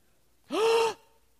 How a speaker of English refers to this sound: And when they first did this, some of the saints gasped.